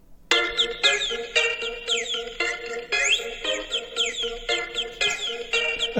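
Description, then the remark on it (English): A bird chirps and warbles continuously in a bright, busy stream of rapid trills and sweeping whistles, fairly loud, with no voices over it. “Ah, we forgot the bird.”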